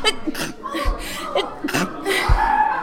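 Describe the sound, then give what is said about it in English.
A sneeze bursts out, sharp and breathy, among a few other short breathy bursts and soft low thumps, with no clear speech. “No one said bless you because no one cares.”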